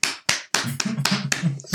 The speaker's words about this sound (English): Round of applause.